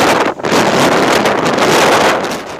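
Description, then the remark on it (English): Hurricane-force winter storm winds in Europe roar and buffet the microphone in a loud, continuous rush of noise, with a brief dip before the gusts surge again and ease slightly at the end. “A strong winter storm named Kira that battered Europe with hurricane-force winds and heavy rains has killed at least five people.”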